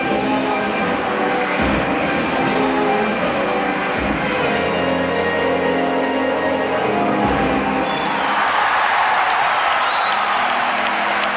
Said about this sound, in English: And once again, a roar of applause. And on the far side of the rink, the people are standing and applauding. The Union Jacks are flying around the rink. Yes, Torvald and Dean won gold at the Winter Olympics in Sarajevo